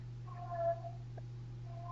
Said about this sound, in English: This is Hex. This is my our cat Hex singing his song.